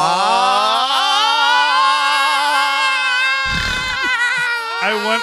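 Two people scream together in one long, loud, sustained shriek that holds steady for several seconds, breaks off briefly with a rough noise, then resumes in a final short burst.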